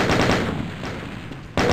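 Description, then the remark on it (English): Video game gunfire as a barrel is blown up and another former soldier is taken out: a quick rattle of loud automatic shots, then a sustained noisy stretch, ending with another sharp, forceful burst. No one speaks. “Blown up a barrel and taken another former soldier out.”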